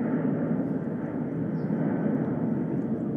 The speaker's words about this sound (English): Like the sound of a plane. Oh, plane.